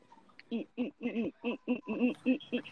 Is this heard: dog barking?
no